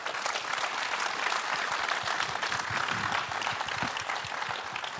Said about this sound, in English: On behalf of, you can clap for them.